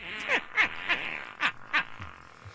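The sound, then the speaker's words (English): A rapid string of five short, squeaky fart noises, each a quick brassy burst with a falling pitch, spaced unevenly over a couple of seconds and fairly loud against a quiet background. “Just nothing but this guy farting in front of people and their reactions.”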